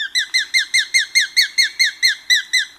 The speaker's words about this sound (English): And the sharp-shinned hawk.